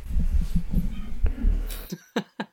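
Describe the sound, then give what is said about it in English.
A dog barks in the background, three short sharp yaps near the end, following a stretch of low muffled rumbling noise. “There's a dog barking in the background.”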